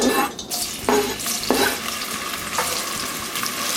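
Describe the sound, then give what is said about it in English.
Onions sizzle steadily in hot olive oil in a cast iron Dutch oven on the stovetop, a dense crackling hiss with a few louder bursts as they're stirred, with no talking. “So those onions are gonna go in my favorite tool of all time, the cast iron Dutch oven, on the stovetop first, okay?”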